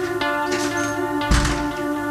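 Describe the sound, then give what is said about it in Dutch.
The door of a coffee room swings shut with one dull, heavy thud, preceded by a faint click, while a steady low hum runs underneath the whole time. “De deur even dicht.”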